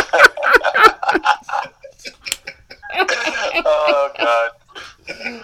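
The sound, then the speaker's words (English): A ticking draft clock timer, set for 60 seconds, clicks steadily and crisply for about a second, then stops as voices start talking and laughing. “Don't forget the draft clock.”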